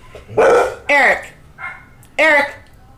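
A dog barks, three sharp loud barks and one softer yelp in quick succession, with a low rumble of background noise between them.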